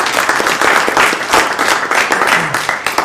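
A round of applause from a crowd, many hands clapping in a dense, steady patter that stays fairly loud throughout the three seconds, with a faint voice briefly mixed in.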